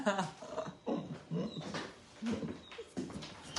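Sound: dogs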